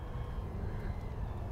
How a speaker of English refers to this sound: This bird is chasing, or is there a drone now? There's a drone that's chasing the thing. Oh, I think they might be filming it.